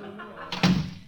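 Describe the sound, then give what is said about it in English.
A door shuts with a solid thud, preceded by a brief sharp click like a latch, over a low murmuring background. “Shut the door. Well, wait a minute. Let me fix the latch.”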